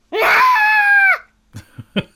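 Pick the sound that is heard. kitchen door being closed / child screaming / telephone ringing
child screaming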